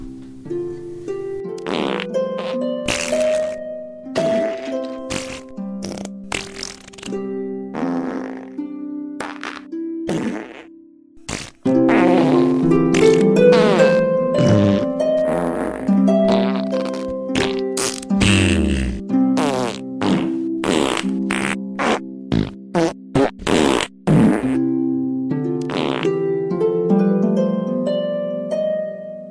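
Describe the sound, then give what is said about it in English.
Half a minute of continuous fart noises, one after another in quick succession, some long and droning, others short and sputtering, loud with no talking. “And I want to say to there's someone out there who listens to the podcast and let us know genuinely that he would much rather hear 30 seconds of fart noises than our ads.”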